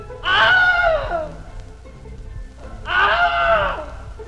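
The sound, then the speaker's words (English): Two loud Wilhelm-style stock film screams, recorded takes of the scream first used in films in 1951, each a short strained yell that falls in pitch, separated by a pause of about a second and a half over faint background noise. “we've actually used these, all three of these last ones, as sort of the official Wilhelm”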